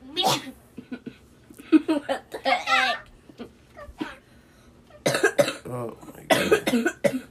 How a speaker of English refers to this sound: Oh, yeah, there's going to be a lot of coughing in this podcast if you guys haven't noticed. Hey, guys. We're all sick, or we were, and we're getting over it now.